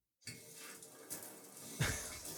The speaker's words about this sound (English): No, it's actually a shower is what it says. A golden shower. It sounded like a shower, not a golden shower to me.